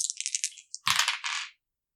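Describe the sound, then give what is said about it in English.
Dice are rolled for an intelligence roll in a game, rattling and tumbling across a hard tabletop: a quick run of light clicks, then a louder clatter as they bounce and settle, over in about a second and a half. “Give me a roll for your intelligence.”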